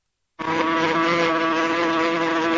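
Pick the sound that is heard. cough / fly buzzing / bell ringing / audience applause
fly buzzing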